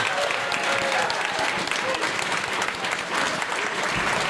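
audience applause

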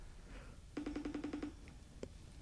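phone call ringing tone

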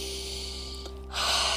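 deep breath

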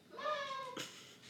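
cat meowing

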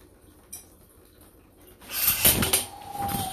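cold shower water running

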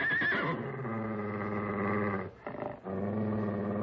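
horse neighing

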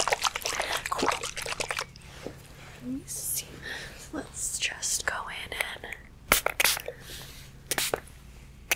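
spray bottle spraying

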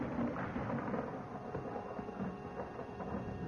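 rumble of thunder

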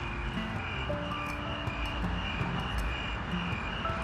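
crickets chirping

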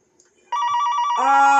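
telephone ringing

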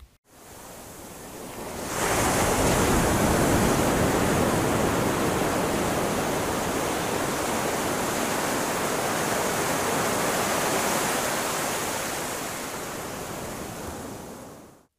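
ocean waves

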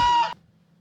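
chicken squawking

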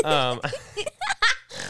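person snorting

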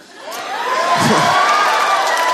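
audience cheering and applause

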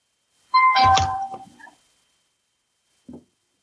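doorbell ringing

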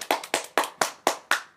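clapping sound effect

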